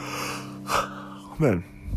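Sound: yawn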